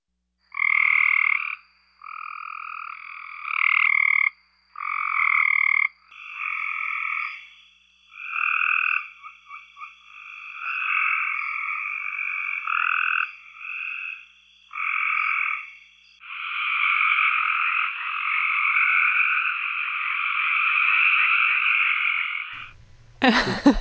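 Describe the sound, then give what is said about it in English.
A Cope's gray tree frog calls in a series of fast, harsh trilling bursts, loud, with short gaps between them, ending in one long continuous trill, no voices present. “That was the Cope's gray tree frog.”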